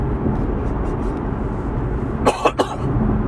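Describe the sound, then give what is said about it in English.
Three quick, sharp coughs, put down to allergies, breaking out over a steady low rumble of background noise. “I'm telling you, I just have a cough.”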